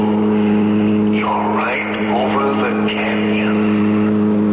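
A car engine drones loudly and steadily, its pitch swooping up and down in a few quick surges as it revs and accelerates.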